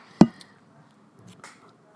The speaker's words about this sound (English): I feel like before we get into it, we should eat a spring roll to hear the crunch. Oh, yeah. We have spring rolls.